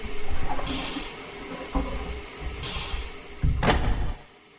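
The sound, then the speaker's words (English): A Great Northern Railway passenger train idles in the depot at Leavenworth during a blizzard, with a steady low rumble broken by three sharp bursts of air hiss and a few muffled thumps. No one speaks. “the conductor, leaves your tiny compartment on the Great Northern Railway, sitting in the depot of Leavenworth, and you're ready to close your eyes for the overnight route over the Cascade Mountains.”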